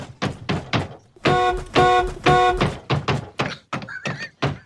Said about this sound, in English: But anyway, here's the best car beating on Film Sack history. So I don't know if we've ever had a good car beating, but this is a beating of a car that I really enjoyed.